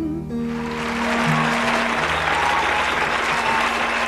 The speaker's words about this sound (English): There we go. I put in an applause sound effect. A free applause sound effect.